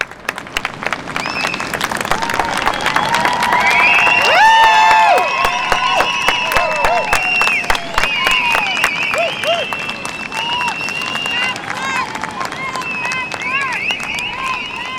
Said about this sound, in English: So for about 15 minutes or so, the only sound on that beach was the waves crashing against the shore. Eventually, the silence was broken by loud cheers from protesters on both sides of the border.